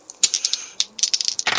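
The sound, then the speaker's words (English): Dice rattle and clatter across a hard surface in a quick burst of sharp clicks, with a louder tumbling rush at the end, rolled for a ranged shooting attack in a game; no voices. “And the next thing I'm going to do is I'm going to try to shoot one with my my ranged attack. Okay. My blast. So roll my shooting.”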